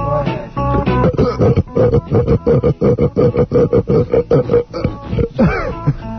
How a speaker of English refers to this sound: I got a little thing I've been saving for you. Machine gun belching. All right. I'm sure the video smarts people appreciate that. This is going to be pretty disgusting, so.